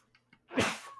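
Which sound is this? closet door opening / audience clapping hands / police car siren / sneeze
sneeze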